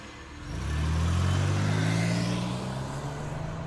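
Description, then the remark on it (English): A car engine kicks in and revs up to a loud, steady hum, its low drone holding for a few seconds before easing slightly. No voices are heard. “All right, start the engine.”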